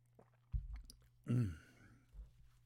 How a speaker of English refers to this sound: Excuse me, I've got to take a sip. This is orange juice, by the way.